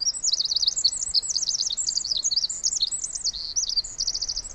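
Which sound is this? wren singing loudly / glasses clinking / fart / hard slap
wren singing loudly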